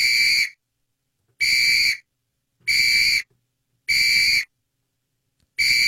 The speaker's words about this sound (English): Preheat to 420 says, "Hey, Adam, had to turn your show off because that effing whistle sound is hashtag overkill."